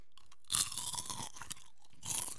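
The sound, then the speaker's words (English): Loud, close-up crunching of kettle corn being chewed right against the microphone, with bursts of crisp crackle and wet mouth sounds over about two seconds, no talking. “It looks like good kettle corn. I'm going to eat this away from the mic, though, because I feel like this is going to be really obnoxious to listen to.”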